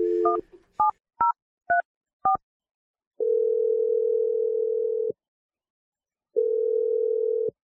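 A phone number is punched in as five quick, clear keypad beeps, followed by two long, steady ringing tones separated by a short silence. No voices are heard.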